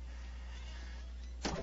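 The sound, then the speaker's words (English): The heavy door of a dead man's cell is pushed shut near the end, a brief grinding scrape followed by a solid clunk, after a stretch of quiet low room hum with no voices. “Please close the door behind us.”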